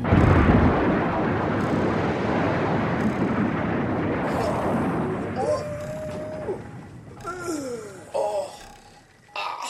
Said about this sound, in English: It's not working, we're gonna crash! Crashing a bit. Crashing.